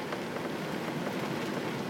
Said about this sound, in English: Yeah, it is pissing it down.